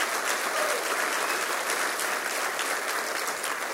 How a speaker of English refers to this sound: So I want to do this. Let's clap. Come on. That's good news.